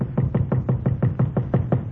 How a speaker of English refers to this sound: Then 3 years go by, and one night I am sitting in my hotel room, and I hear a knocking on my door.